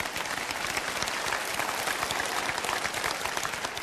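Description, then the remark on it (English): An audience claps steadily throughout, a dense, even wash of many hands with no pauses and no voices standing out. “You can clap for that.”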